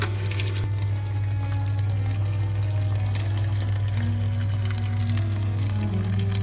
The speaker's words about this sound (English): And a liter and a half of boiling water.